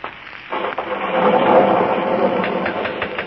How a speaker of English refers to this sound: Listen to that thunder.